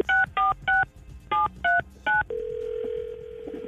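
Six quick touch-tone beeps of a phone number being dialed to call someone's father, in two groups of three, followed by a steady ringback tone. Clear, with no talking.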